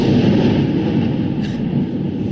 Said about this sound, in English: Well, that was a rather large explosion. Yeah. Yeah. It's like when you watch the video, he turns his head and you can see the half of his face that's facing the explosion is just completely red. Like it's fully light up from this massive explosion.